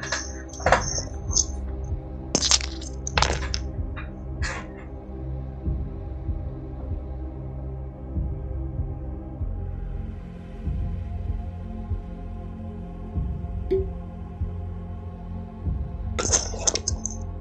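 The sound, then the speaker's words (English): A wine cork being worked out of a bottle: several short, squeaky scraping bursts in the first few seconds, a quieter stretch, then one last sharp burst near the end, over a low steady hum. “I just heard cork.”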